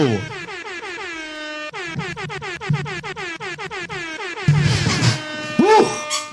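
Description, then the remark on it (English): A series of rapid, blaring air horn blasts in quick succession, loud, ending in a chaotic burst of noise with a rising and falling whistle-like tone. “Breaking the air horn on that one, Drew.”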